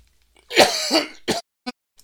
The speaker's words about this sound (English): Sorry, I couldn't get to the cough button in time